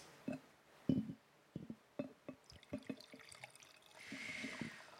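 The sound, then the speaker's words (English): Wine being poured from a slightly dusty bottle into a glass, starting with a run of irregular glugs, then settling into a steadier splashing fill toward the end. Fairly quiet, with no talking. “I'll let you hear this pour though.”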